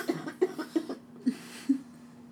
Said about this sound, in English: Sorry. I should stop coughing in a few episodes. I'm still recovering. It's only been a week since I've been very ill.